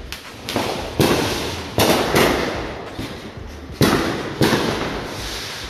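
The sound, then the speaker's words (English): Fireworks popping in a steady barrage: about eight sharp, loud bangs at irregular intervals, each leaving a crackling, echoing tail that blends into the next, with no voices. “Y'all hear all that? Fireworks.”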